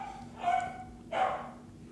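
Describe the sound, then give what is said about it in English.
Two separate dog barks about half a second apart, fairly loud over a steady low background hum. “Dogs.”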